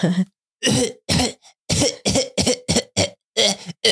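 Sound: voice imitating a cough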